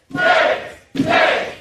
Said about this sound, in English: The Democrats are protesting on the floor here? They're protesting on the floor. They're activists. They're actually activists. Yelling, shame, shame, shame. That's what they're chanting.